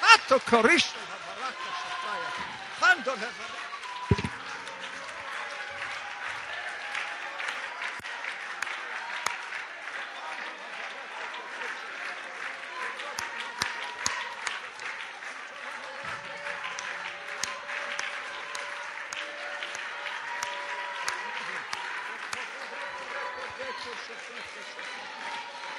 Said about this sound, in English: But right now, just do a little shouting for me, will you? Because I feel the presence of God, the power of God in this place.